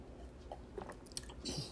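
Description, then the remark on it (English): Someone drinks water while coughing: a few soft, wet gulps and mouth clicks in irregular succession, quiet and with no talking. “I'm drinking water at the same time while coughing.”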